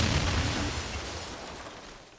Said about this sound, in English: Jetpack Patriot went out like a human firecracker. Doesn't get more patriotic than that, huh?